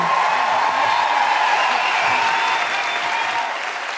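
A crowd claps for four people in a dense, sustained burst of applause that holds strong for several seconds before tapering slightly toward the end. No one speaks over it.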